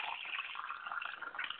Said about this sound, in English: Hey, pour me a glass while you're doing it. I guess this new microphone I got is really picking up on a lot of noises here.